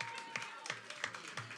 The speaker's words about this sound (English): Anyways, round of applause for her for coming out.